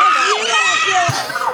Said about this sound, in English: That screech, though.